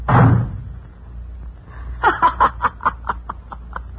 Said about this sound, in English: Well, what do you know? The old goat slammed the door on you.